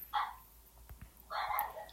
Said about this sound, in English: My dog's going crazy, don't mind him.